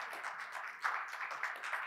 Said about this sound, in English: So God, give them a clap and thank the Lord for them.